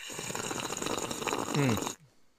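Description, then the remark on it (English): A long, loud, noisy slurp of hot coffee sucked in for about two seconds, rising briefly into a gurgling tone near the end before cutting off abruptly. No one speaks. “I cannot slurp coffee like that.”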